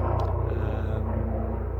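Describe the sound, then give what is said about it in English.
A helicopter flying overhead, a loud, steady low rumble with a fast rhythmic throb from the rotors, continuous for the whole moment with no voices. “So I apologise, there seems to be a helicopter going overhead.”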